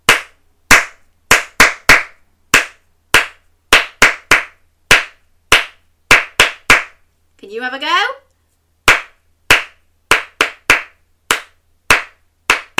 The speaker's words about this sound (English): See if you can have a go without me clapping.